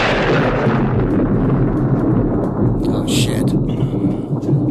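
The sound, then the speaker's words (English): A deep, rolling rumble of a thunder sound effect fills the whole stretch, loud and sustained with a heavy low-end roar that slowly fades. “And then sometimes, you know, life can get stormy and...”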